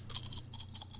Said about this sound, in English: I was grabbing some coins out of my backpack, like, to do that bit, and I literally only had dimes in there, and I was like, perfect.